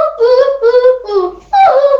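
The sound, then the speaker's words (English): A person imitates a sassy pigeon with four quick, nasal, warbling coos in a row, each bending in pitch, with the last one louder and more emphatic. “The sassy pigeon.”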